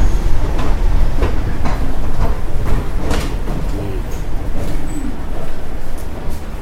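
Busy ambience at the Port Authority bus terminal in New York City: a steady low rumble of engines and crowd noise, scattered clanks and clatters, and faint indistinct voices murmuring in the background throughout.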